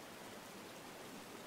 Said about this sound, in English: And you can just hear the beautiful flow of water flowing so gently and so naturally down the river.